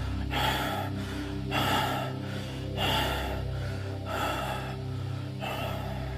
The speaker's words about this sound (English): Now you have reached the top of the mountain. Your breath continues to rasp in rapid gasps.